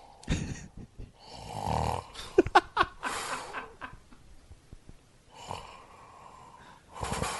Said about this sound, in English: I do hear snoring sometimes in other rooms and hotels, and it's crazy how loud some people snore. I mean, it's you can hear it through the walls, you know?